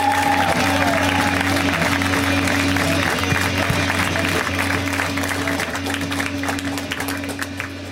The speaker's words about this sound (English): A round of applause, everyone